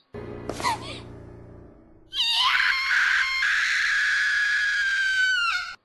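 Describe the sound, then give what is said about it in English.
A young woman's voice lets out a long, shrill, anguished scream lasting several seconds, loud, after a brief strained gasp and a moment of quiet: the anime character Artesia screaming as she realizes her father is dead, in the Japanese-language version. “I will say, like, you said you really liked the dub, and, like, I liked the dub, too, but I think I liked Artesia's scream when she realizes her father's dead better in Japanese.”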